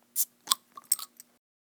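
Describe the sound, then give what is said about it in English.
A brown amber bottle of Kolschella beer is pried open with a bottle opener: a metallic scrape and click, a short fizzy hiss of escaping gas, then a couple of light clinks as the cap comes free, all fairly quiet. “So, if you have one, grab your bottle opener. And let's open it.”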